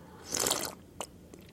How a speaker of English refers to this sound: Hold on, I'm going to have a sip of tea. I learned how to use this hot water maker. You got to plug it into a specific hot water maker plug, and that's how it works. So this tea is finally hot.